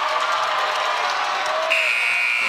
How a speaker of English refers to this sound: The old high school gym buzzer. All that good stuff.